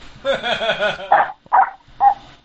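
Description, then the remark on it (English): A dog named Fifi, calling in by phone from Canada, lets out a brief warbling, whiny vocal sound, then three loud, sharp barks spaced roughly half a second apart. “We got a dog calling in from Canada.”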